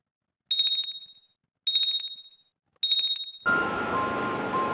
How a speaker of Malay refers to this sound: Jadi, ketika mereka berdua makan dengan tenang, tiba-tiba ada loceng pintu berbunyi.